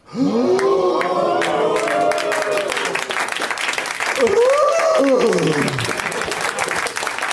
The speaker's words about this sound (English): Long applause.